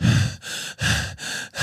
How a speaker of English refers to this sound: See how crisp it picks up my breathing? That's insane.